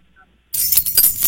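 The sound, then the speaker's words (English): Keys jangle after a brief silence, a bright, metallic jingle with several quick clinks, lasting just under a second. “There it is. Collar's keys.”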